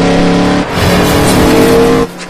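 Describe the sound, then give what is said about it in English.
A car engine roars loudly, its droning tone shifting pitch as it revs, with a hint of tire squeal and no voices. “Crazy grandpa car.”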